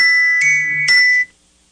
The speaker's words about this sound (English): I was just listening to that interesting bell. Sorry about that. I did put my phone on silent.